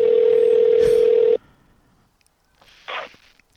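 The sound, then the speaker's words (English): A loud, steady telephone dial tone hums for over a second, then cuts off; after a brief hush, a short electronic dialing beep sounds. No one speaks. “That phone, huh?”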